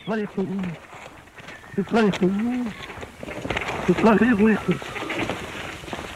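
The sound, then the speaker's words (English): A male musk duck at a nature reserve mimics a caretaker's phrase "You bloody fool" during a mating ritual, in three short, throaty, voice-like bursts, muffled and hoarse, repeated with pauses between them over a steady background hiss. “This is the duck having it off.”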